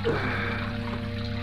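Water trickles and splashes steadily into a fountain basin, a continuous wash of sound with a faint low hum underneath and no voices.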